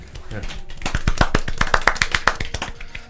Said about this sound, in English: So, round of applause, guys.